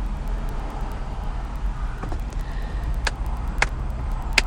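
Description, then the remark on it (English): A steady low rumble of a truck rolling along a road, heard from inside the cab, with a few sharp clicks and knocks scattered through the continuous drone. “It's funny, though, because this truck will not flip a bitch easily.”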